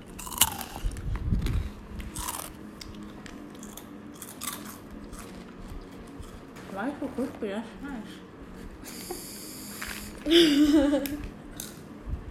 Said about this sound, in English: So now we're eating Tong Garden honey sunflowers and talk louder.